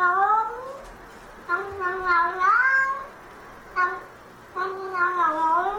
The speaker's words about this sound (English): I've got the clip where it's the cat, then the keyboards and the vocals, then drums.